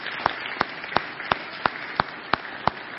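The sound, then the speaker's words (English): An audience applauds children who sang songs at a Vacation Bible School service, a dense wash of clapping with one sharp clap standing out in a steady, even beat about three times a second. No one speaks. “Let's give them another round of applause for singing here today.”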